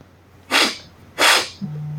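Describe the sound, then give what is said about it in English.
A person imitates a bear sniffing with two loud, breathy snorts about half a second apart, followed by a low, steady hum. “The bear sniffs at you a few times, like...”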